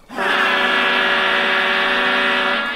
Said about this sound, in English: At that, you hear a loud, loud, loud, loud honking of a horn.